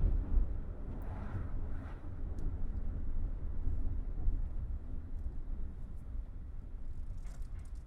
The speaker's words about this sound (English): The truck is running idle for a moment. He stops short. The truck brakes, pulls over to the side of the road.